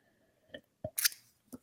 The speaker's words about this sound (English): That was real emotion, real cracking of the voice, not just because I was a little thirsty like I am now. So I'm going to take a little sip.